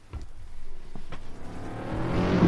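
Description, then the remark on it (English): A small motorbike engine, like a moped, approaches from far off, its buzzing drone growing steadily louder and higher over a couple of seconds, with no one speaking. “That's like a moped coming from the distance.”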